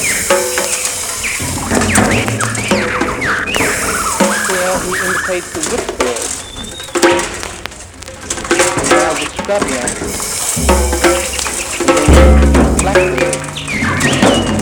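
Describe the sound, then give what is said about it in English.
A lyrebird sings loudly, a dense, continuous stream of varied chirps, whistles and trills mixed with mimicked alarm-like and mechanical sounds, imitating forest birds, tree chopping and car noise. “it is the lyrebird's voice that is so magnificent, as you can imitate all the birds of the forest.”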